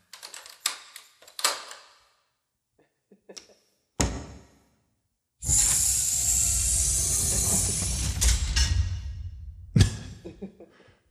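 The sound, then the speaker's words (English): Heavy doors in a maximum security facility being unlocked and opened: a run of ratcheting lock clicks, a loud clunk, then a long harsh grinding roar as a door slides open, ending with another heavy bang. “Dude, sorry, we got a lot of doors in here, you know.”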